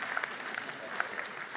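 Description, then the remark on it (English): An audience applauds steadily, a dense wash of many hands clapping at moderate volume with scattered sharper claps standing out. “Now, you can clap.”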